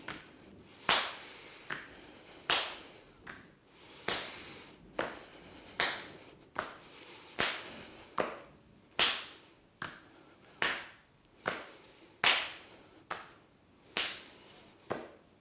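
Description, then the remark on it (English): Hands slap the creases of the hips while bouncing in a goddess victory squat, a steady, repeating rhythm of about one sharp smack every second or so, fairly loud with no talking over them. “You're going to go into a goddess victory squat, and we're going to tap right here on the creases of the hips, and we're going to do a little bit of a bouncing. So you're going to bounce and slap, bringing energy right into the lower dantian.”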